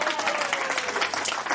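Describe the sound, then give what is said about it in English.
An audience claps steadily, a dense patter of many hands at an even, moderately loud level, with a faint voice murmuring beneath. “And just don't sit there and clap.”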